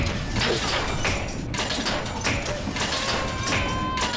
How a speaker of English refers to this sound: I'm going to turn the dryer on.